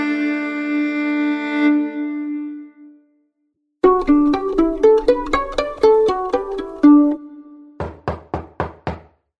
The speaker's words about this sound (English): Hear that, fellas? Everybody knows what that means. We got a guest knocking at the door.